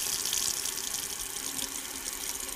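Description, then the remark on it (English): A household faucet in Arlington, Massachusetts, supplied by the Quabbin Reservoir, runs steadily, a bright, hissing stream of water pouring at constant strength with no pauses and no voices, fairly loud throughout. “When I first heard that four towns were flooded to build the reservoir, I imagined a little Atlantis down there, that the water coursed through some intact village on its way to my faucet, and it was kind of haunting.”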